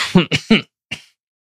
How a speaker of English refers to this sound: I apologize for coughing into the microphone.